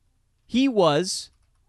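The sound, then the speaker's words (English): A child playing a game shouts the single drawn-out word "boring" once, high-pitched and rising then falling, ending with a hissy sound. It is brief and moderately loud, with quiet around it. “I think you heard my kid yell out the word boring.”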